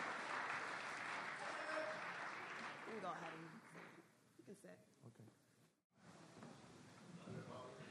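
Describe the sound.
A crowd applauds a volunteer coming up to help with a presentation, steady, dense clapping for several seconds, fading into voices and scattered talk, then a brief pause before clapping and chatter resume.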